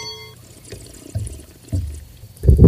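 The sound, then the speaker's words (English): Pennsylvania Chardonnay wine glugs out of a bottle in a few uneven bursts, fairly loud, the last surge the strongest. There is no talking. “Well, we have an empty wine bottle right now. Oh, there's some Pennsylvania Chardonnay in there.”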